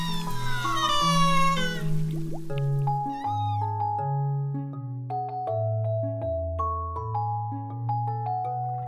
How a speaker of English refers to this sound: That, in case you didn't know, is a humpback whale singing.